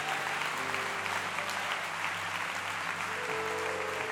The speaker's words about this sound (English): I want to give double honor tonight to Bishop Stark. What a man of God. Would you clap your hands for him?